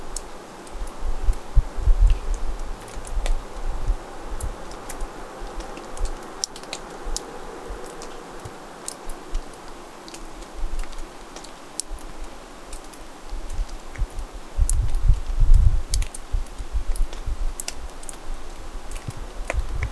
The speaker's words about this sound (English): That was water on a misty morning dripping off a mossy rock.